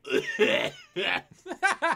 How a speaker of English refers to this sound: Yeah. Yeah, that they've just been coughing for a while.